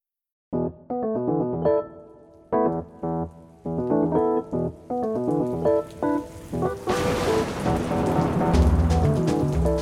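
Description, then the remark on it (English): A melodic musical passage plays, then steady heavy rain of a lightning storm rushes in and washes over it, with a low rumble of thunder rolling in near the end. “In the time it takes me to say this sentence, lightning will strike thousands of times around the world.”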